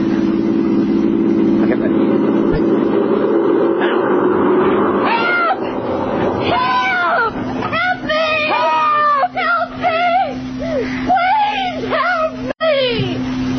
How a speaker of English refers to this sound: Listen. Here comes another car. When it's right above us, let's try yelling all together as loud as we can.